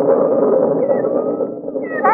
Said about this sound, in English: Did you hear that? What? You hear it? Sounds just like little kittens. Yeah. Well, I wonder where they come from.